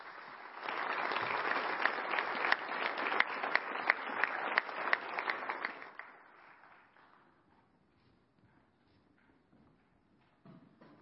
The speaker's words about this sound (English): and we just have a small token of appreciation to both of them. So join me in a round of applause for these two.